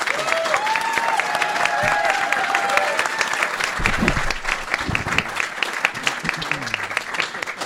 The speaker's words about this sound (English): A round of applause.